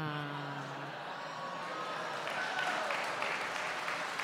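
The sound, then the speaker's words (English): An audience applauds steadily for about four seconds, a dense, even clatter of many hands clapping, with a voice briefly audible over the start. “Don't applaud for that.”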